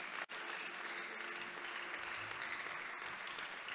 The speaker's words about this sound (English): Give the Lord mighty clap of hands.